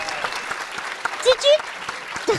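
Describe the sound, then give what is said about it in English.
A crowd applauds a guest dressed as Colonel Lethbridge Stewart from Web of Fear, clapping steadily throughout in a dense, even patter, with a couple of brief whoops or raised voices cutting through near the middle and end. “Round of applause for Colonel Lethbridge Stewart.”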